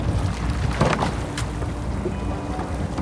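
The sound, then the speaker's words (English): A small rowing boat out on open water, with a couple of brief splashy oar strokes over a steady low rumble of wind and lapping water; no voices. “It's the only time in my waking hours that I can forget that I'm blind is when I'm in a boat rowing, because it's all about the feel, the sound.”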